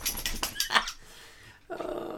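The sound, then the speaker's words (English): A female dog makes small whiny, grumbling vocal noises: a quick cluster of short sounds, a brief pause, then another drawn-out moaning note. “See, this is what I wanted to capture. I wanted to capture your little songs.”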